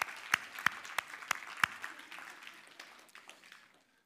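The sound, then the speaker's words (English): A crowd claps for the guests in a brief burst of applause, with a few sharp, louder claps standing out early before the clapping thins and fades away after about four seconds. “Why don't we give our guests a round of applause?”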